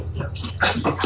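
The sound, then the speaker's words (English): Dogs make short, whiny yelps and vocal noises in quick succession over a low steady hum, moderately loud with no other voices. “That noise that you are hearing in the background part of Master Debaters. Spooky's dogs.”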